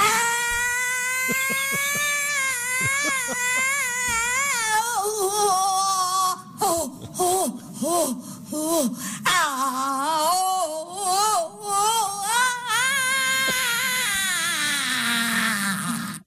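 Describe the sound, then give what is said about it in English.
A long, raw vocal primal scream by Yoko Ono in her video message responding to Donald Trump's election, wavering and warbling in pitch, with sustained wails broken by choppy, gasping cries midway before one final drawn-out howl; loud throughout, no words. “A little primal scream therapy.”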